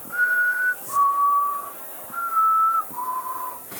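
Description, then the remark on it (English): A person whistles a chickadee call, a distinct four-note minor melody: four clear, pure notes in two high-then-lower pairs, each held steadily for about half a second, with no talking. “I would love to hear the call of a chickadee absolutely.”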